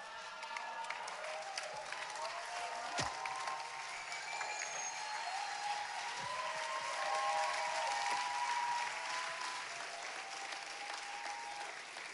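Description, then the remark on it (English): Steady, sustained applause from a large crowd, dense clapping for the whole stretch with a few faint cheers and voices mixed in. “Is that your best clap for the night?”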